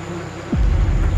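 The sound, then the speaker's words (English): Bees from a hive in a residential area buzz in a steady, droning hum, then one swoops in with a quick drop in pitch, and the buzzing swells into a louder, rougher whir as the alarmed bees come out. “Very dangerous hive in a residential area.”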